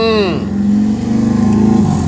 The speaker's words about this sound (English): Okay, thank you, Motorcycle. Appreciate you.